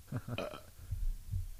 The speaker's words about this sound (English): You can go ahead and burp. Beer burp. Beer burp, y'all.